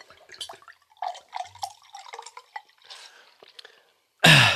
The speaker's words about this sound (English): And now listen to this pour.